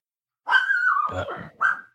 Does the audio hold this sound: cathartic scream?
no